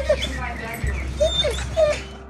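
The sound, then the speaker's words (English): A cadaver dog whimpers and yips, giving several short, high-pitched whines in quick succession over a steady low rumble. “the cadaver dogs finally arrive.”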